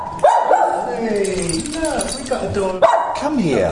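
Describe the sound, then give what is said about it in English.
Two dogs, one named Josie, yip and whine excitedly, with two sharp bark-like outbursts and sliding, high-pitched cries filling the gaps between them. “You two are good dogs.”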